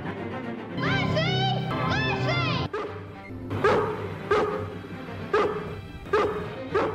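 A dog whines and yelps in high, wavering cries, then lets out a series of sharp, loud barks at uneven intervals.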